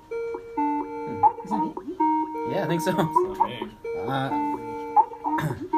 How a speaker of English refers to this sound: That Skype music always reminds me of the old Shadowgate Nintendo game. It sounds like the same exact